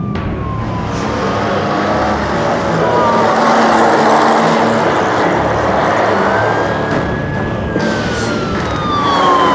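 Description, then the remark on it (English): A traffic police car siren wails in long rising and falling sweeps over the heavy roar of a fast-moving engine, loud throughout, as the patrol pursues a speeding vehicle off the M25 at junction 16. “Just need to deal with the traffic patrol on my tail.”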